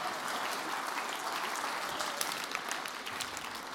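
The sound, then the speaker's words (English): An audience stands and claps to praise God, many hands blending into a dense, even wash of applause with scattered sharper claps standing out, holding at a constant level throughout without any talking. “Let's stand and clap our hands tonight and praise him.”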